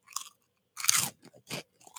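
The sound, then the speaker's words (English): Crisp crunching of barbecue-flavored plant-based pork rinds being chewed, a few irregular bursts of loud crackling bites with short pauses between them, no talking. “You hear the crunch? Yeah, it's very crunchy.”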